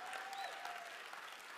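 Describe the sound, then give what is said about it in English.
An audience claps their hands in praise, a dense, steady wash of applause with no distinct rhythm, holding at an even level throughout, with faint voices mixed in. “And if you're ready for it, church, clap your hands and give God praise.”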